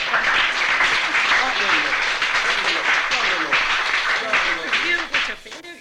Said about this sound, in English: and here she is. Give her another clap.